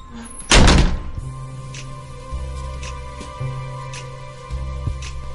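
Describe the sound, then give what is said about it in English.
A single heavy door shuts with a deep thunk, followed by a low lingering hum and faint rattles as it settles. “There's the door. Goodbye. Shall I close it behind me? Yes, don't let it hit you.”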